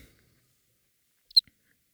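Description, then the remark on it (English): A person's voice makes a single quick, high-pitched chirp, a short squeaky burst with a faint tail, in otherwise near silence. “Stop making chirping sounds.”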